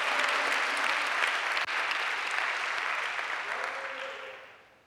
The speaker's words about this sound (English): Let's encourage them a little bit with some applause.